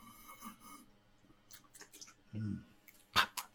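Quiet sipping and slurping from two people taking a sip of their drinks, a few short wet mouth sounds and a sharp click near the end, with no talking.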